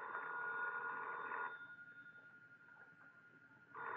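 A telephone rings loudly with a long jangling burst, falls silent for a couple of seconds, then starts ringing again. No one speaks.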